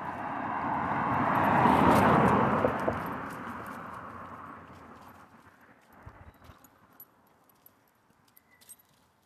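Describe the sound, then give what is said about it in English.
A car passes by on a road, its broad whooshing engine and tire noise swelling over the first two seconds, then fading away, followed by faint scattered clicks and rattles. “So hold on, I'm going to wait for this one more car to pass.”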